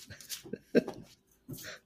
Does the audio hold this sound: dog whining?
yes